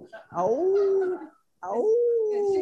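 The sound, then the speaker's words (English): A puppy howls twice, each drawn-out cry sliding down in pitch then holding steady for about a second, with a brief silent pause between them. “bring the puppy up here.”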